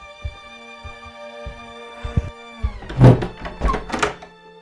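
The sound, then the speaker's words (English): A few slow, muffled thumps approach over a steady electrical hum, then a burst of rattling and clunking as a door latch is worked and the door is answered and swings open. “I am not rushing to answer this door.”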